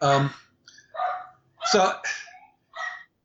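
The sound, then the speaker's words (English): A dog barks in a quick series of about five sharp, fairly loud yaps with brief pauses between them. “I think we have a visitor. We'll quiet the dog down in a minute.”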